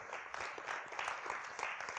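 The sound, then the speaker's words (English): A church audience applauds steadily on a rainy morning, many hands clapping together in a dense, sustained patter at a moderate, even level throughout. “Give yourselves a round of applause for getting out of bed on a rainy morning.”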